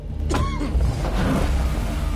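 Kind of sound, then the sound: vehicle, car being driven away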